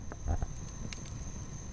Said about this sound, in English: but she suggests that I put the microphone a little closer to the fire so we could get a better sound, and then this happens.